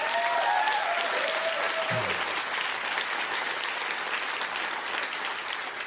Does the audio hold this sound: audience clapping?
yes